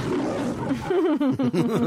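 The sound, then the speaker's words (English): A person lets out a single drawn-out growling roar, imitating a tiger, starting rough and low then wavering in pitch with a trembling, throaty quality, loud, with no other talk. “Easy, Tiger.”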